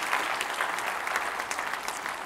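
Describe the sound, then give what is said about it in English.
An audience applauds together in praise of God, a dense, steady wash of many hands clapping with bright, crackling texture and a few faint voices mixed in, sustained at an even level throughout. “If He's transformed your life, give Him a big round of applause.”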